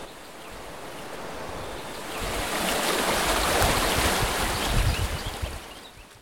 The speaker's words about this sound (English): The rivers thunder and slide over the rocks.